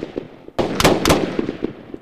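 A quick burst of gunfire: two or three loud, sharp bangs about a quarter second apart, each leaving a short noisy ring, with no voices; the shots hit a sheriff's deputy.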